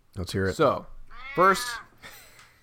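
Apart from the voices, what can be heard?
cat meowing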